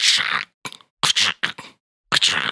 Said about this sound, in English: All you hear is the repetitious thud, thud, thud of the cleaver hitting the wood block, chopping up the bones as they crunch.